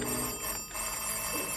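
A telephone bell rings continuously in a bright, sustained metallic trill, steady, with no voices over it.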